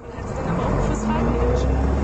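A bus driving past: a loud, steady low engine rumble with broad road noise that holds fairly even for about two seconds, with no clear rise or fade.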